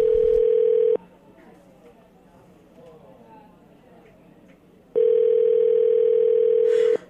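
A loud, steady telephone dial tone hums for about a second, cuts off into a few seconds of faint background chatter and noise, then returns just as loud and continuous.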